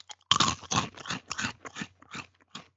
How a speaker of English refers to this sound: That's crunching. Good. You brought a bag of chips to a podcast recording.